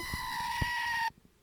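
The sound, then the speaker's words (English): A loud, steady electronic goat scream from a battery-powered screaming goat toy with failing batteries plays for about a second, a flat buzzy bleat that cuts off abruptly, leaving quiet background noise. “I was like excited to have the screaming goat through the entire podcast, and the batteries are failing.”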